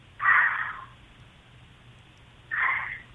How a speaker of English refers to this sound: If you don't mind, please listen to this bark. I like to make sure that these are gray foxes.